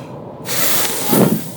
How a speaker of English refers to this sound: So what you do is, you swim, you take your in-breath, and then immediately start breathing out, but with your lips almost closed into a hole, and your cheeks puffed out if you want to do that.